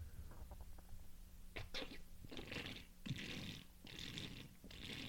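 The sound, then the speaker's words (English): Loud, wet slurping of a drink, five or six hissy sucking bursts in a steady rhythm, with a faint low hum underneath and no talking. “Nobody drinks that loudly. I mean, you got to slurp them, man.”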